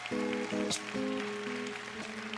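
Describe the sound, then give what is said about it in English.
A crowd at a meeting claps steadily in a dense wash of applause, giving a clap of praise, while sustained low musical tones, like an organ or keyboard, hold and shift underneath. “And come on, give a clap of praise.”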